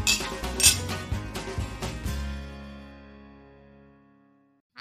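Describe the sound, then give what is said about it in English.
Glasses clink in a toast, bright glassy clinks ringing out in a quick cluster over the first two seconds, then a sustained tone lingers and slowly fades to near silence. No one speaks. “Well, I think it's a cheers to that. Let's. Cheers.”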